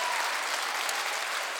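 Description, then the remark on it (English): An audience applauds in praise of God in a steady, dense wash of many hands clapping together, bright and sustained without a break, with no voices standing out. “Instead of giving man glory, which we just did a little bit of, but instead of doing that, why don't we just give God a hand praise and a clap praise and give him glory.”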